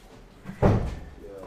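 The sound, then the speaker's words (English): A single door swings shut with a solid thump that rings out briefly, with quiet shuffling before it and nothing else after. “I have to close doors and open doors and do sort of stuff to get ventilation going.”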